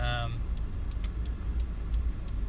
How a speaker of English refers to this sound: And I'm just keeping the theme of, like, driving in my car.